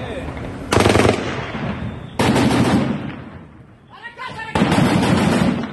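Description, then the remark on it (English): Three loud, sustained bursts of rapid automatic gunfire rattle out on the streets of a major city in Afghanistan, with short quieter gaps between them where faint shouting voices can be heard in the background. “One thing I've been struck by watching what's happening now is that the videos we're seeing now come out of Afghanistan of men with RPGs on the streets of major cities and the streets empty and gunfire ricocheting around.”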